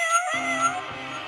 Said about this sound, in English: let me get one more motherfucking meow for the small cat, Vernon Butler, y'all.